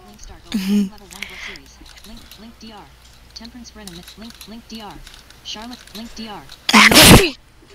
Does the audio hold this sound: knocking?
no